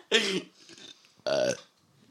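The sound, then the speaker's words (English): Two loud burps in quick succession, each a short harmonic belch with a croaky, voiced tone, separated by a brief pause and some quieter rumbling in between. “I farted and everybody starts burping.”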